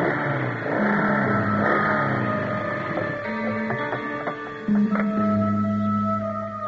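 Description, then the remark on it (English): Loud motorbike engines, ridden by security guards, roar and rev steadily, their pitch shifting as they draw nearer, with no voices over the sustained mechanical drone. “The driver is about to climb back into his cab when he hears the roar of the approaching motorbikes.”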